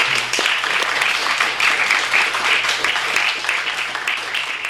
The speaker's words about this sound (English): Thank you. Can we get one more sort of collective round of applause for all our readers tonight?